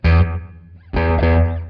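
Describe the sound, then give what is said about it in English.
Two loud, slightly distorted electric guitar chords ring out one after another. Each trails off through a wavering tape echo delay pedal with its modulation turned on at a low setting. No voices. “This actually turned into kind of a user's manual for the FoTape Echo.”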